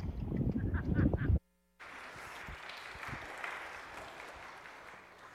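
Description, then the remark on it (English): An audience applauds to welcome a guest speaker, with dense, crackling clapping that cuts off briefly, then resumes as a steadier, somewhat softer wash of many hands for several seconds. “Such nice applause.”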